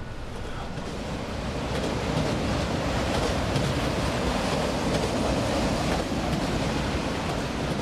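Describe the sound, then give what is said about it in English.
A passenger train rolls along the rails with a steady, dense rumble and hiss that swells slightly at the start, then holds constant throughout, with no voices. “Once your ticket has been collected, you can move about the train.”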